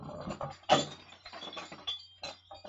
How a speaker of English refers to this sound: that's Holly's squeaky toy. That's not Holly doing other things. She likes to sit on it, so just bear with me.